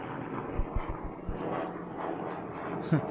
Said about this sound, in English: She had another helicopter coming over. Fucking helicopter, god damn it.